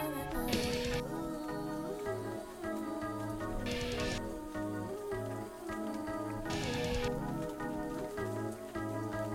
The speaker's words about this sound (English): I like the sound of the rain in the background. Yeah, I think it's raining in here.